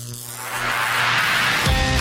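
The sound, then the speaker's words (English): A vacuum tube radio warming up before a special live broadcast on Georgia Radio: a steady low electrical buzz with rising crackly static that swells louder, then a brief rougher surge near the end. No voices. “The vacuum tubes are warming up.”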